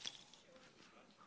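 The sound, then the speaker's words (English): A bunch of keys is grabbed and held up to show during a sermon, jangling: a bright metallic burst at the start, then faint scattered clinks trailing off quietly over about a second. “Can I just grab those keys?”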